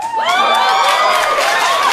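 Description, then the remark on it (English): The studio audience of Jimmy Fallon's show breaks into loud, sustained cheering at the news that the 2020 census showed the number of white people went down, a dense wash of many voices with high whoops and shouts rising over it for the full two seconds. “Why would you cheer that?”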